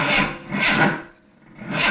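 A car engine cranks in raspy, grinding bursts without catching, falling briefly quiet partway through before the rough churning starts again.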